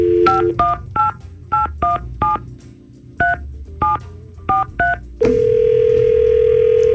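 A phone number is dialed by the Y100 radio show for its Second Date Update segment: about a dozen quick touch-tone beeps in an uneven rhythm, each a short two-pitch chirp, followed by a steady ringing tone that continues to the end.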